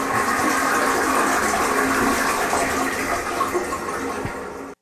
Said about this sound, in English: Tammy gets to follow the flush again. Of course. In the toilet.